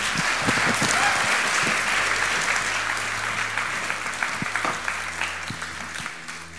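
An audience applauds steadily, a dense wash of many hands clapping at once that holds for several seconds before gradually thinning and fading toward the end.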